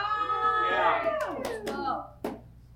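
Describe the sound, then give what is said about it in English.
An audience cheers with raised, overlapping voices, and a handful of sharp, scattered claps break through before the cheering fades out. “Now you're cheering for the excitement of the ending immaturity”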